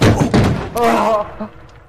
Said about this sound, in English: Did your fat, chunky ass just break that steel chair?